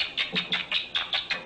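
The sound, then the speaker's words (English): Rats chirping during rough-and-tumble play, tumbling and tickling each other, a quick run of about eight high, squeaky chirps in a steady rapid rhythm, fairly soft, with no voices. “They tumble, they engage in roughhouse play, which produces a tickling effect, says Jaak Panksepp, and lots of chirping.”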